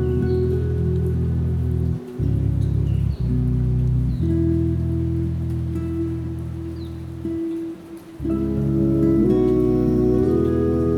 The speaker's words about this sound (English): Be here in the rain and invite yourself to recognize each of the blessings.